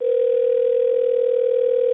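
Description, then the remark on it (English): A steady, unbroken telephone dial tone hums at constant loudness for the full two seconds, heard alone with no voices, after one party hangs up on a phone call. “No, we weren't disconnected. I hung up on you.”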